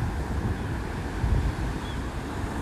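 ocean waves and wind

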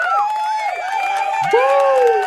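applause

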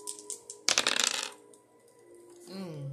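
dice being rolled

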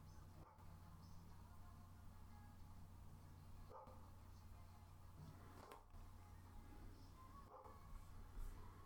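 dog barking outside

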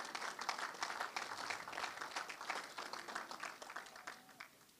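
audience clapping

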